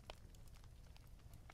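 A campfire crackles softly, with scattered sharp pops and snaps at irregular intervals over a low, steady rumble of burning. No one speaks.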